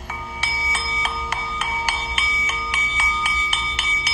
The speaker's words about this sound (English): The singing bowl exudes positive energy.